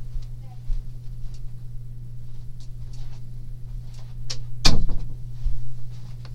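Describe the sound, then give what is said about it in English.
A door shuts once with a sharp thud partway through, standing out against a steady low electrical hum and faint background shuffling. “I gotta close this door.”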